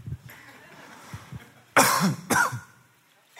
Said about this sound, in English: Sorry about that. Cough. Caught something.